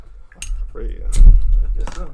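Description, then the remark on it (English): Glasses clink together in a toast in a few bright, sharp taps, over a low rumble of background noise and some muffled voices. “Salute. There we go. Let's get that.”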